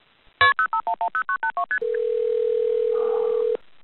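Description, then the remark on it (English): A phone keypad dials a quick run of about ten beeping touch-tones for a 911 emergency call, followed by a steady, unbroken ringing tone that holds for nearly two seconds before cutting off. No one speaks. “I had somehow gotten my phone out, and by that point I was already calling 911.”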